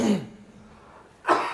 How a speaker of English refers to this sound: Whoa. Come on, go up deck there if you want to cough that loud. Jeez. Come on, stuff echoes down here.